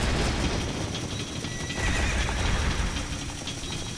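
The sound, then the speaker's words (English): A white horse whinnies over the steady drumming of galloping hooves as it flees over a lowered castle drawbridge in a storm, carrying Princess Zelda in a Link video game scene, with a dense, noisy rumble beneath that stays fairly loud for the whole few seconds. “The drawbridge lowers, a white horse flees.”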